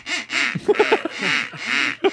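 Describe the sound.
A series of loud, nasal duck quacks from a duck call, coming in a steady run of raspy honks with a quick stutter of short ones in the middle, with no talking.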